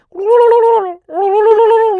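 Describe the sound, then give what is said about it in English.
A recorded bird mating call, played from an MP3 at home, sounds twice, each a loud, drawn-out, throaty honk lasting nearly a second, with a brief gap between them. The calls are clear, with no talking. “I don't think he had a mating call, MP3 of a mating call. This is what I play when I get home.”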